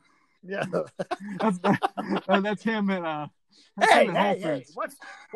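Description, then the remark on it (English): A man's voice briefly imitates a dog growling, a rough, strained burst right after someone speaks a few words. It is fairly loud, and talk resumes around it. “What's wrong with my growl?”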